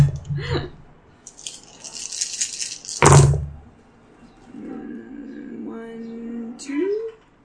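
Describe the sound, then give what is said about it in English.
Dice rattle briskly in a cup for a couple of seconds during a game, then land with one sharp clatter on a hard surface; soft voices murmur afterward. “Please give me your full dice roll again.”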